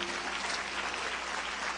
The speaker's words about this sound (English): So why don't you clap your hands one more time.